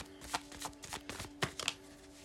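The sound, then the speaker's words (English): Tarot card shuffling: a run of quick papery riffles and flicks, light and crisp, with a couple of sharper snaps near the end and a faint steady hum underneath. “Let's shuffle a little bit more.”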